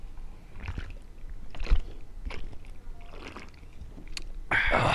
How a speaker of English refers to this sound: Let's chug a beer. I'll chug a beer. Chug a fucking beer? All right, here we chug go. Chug a beer. Cheers. We're chugging beers.